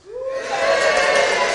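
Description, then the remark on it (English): A crowd bursts into cheering, the roar swelling quickly and holding steady and loud, a dense mix of shouting and whooping voices, as an audience votes by cheerometer on whether a son looks like his dad. “So if you think son looks like dad, let's have a cheer.”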